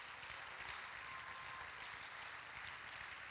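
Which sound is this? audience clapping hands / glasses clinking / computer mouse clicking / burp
audience clapping hands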